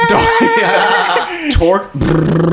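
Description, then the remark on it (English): A person's voice mimics dolphin noises: high, warbling squeaks and chattering tones that slide up and down in pitch, loud, with a brief clicky burst midway and no spoken words. “And then one of them was dolphin noises.”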